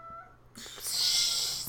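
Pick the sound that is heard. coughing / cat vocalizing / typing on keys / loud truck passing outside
cat vocalizing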